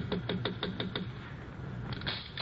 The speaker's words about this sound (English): Hey, wait a minute. Sounds like somebody's knocking on her door.